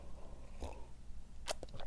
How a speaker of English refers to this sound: So all of November, let me just take a sip of my coffee, which I have here.